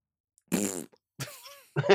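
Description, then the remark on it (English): Three loud fart noises blown with the mouth, a buzzy first one, a longer wavering one, then a short final splutter, separated by brief silences. “Just farting. Sorry. Fart.”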